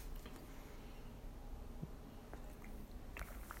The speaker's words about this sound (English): Hold on a second to pause for a brief coffee sip.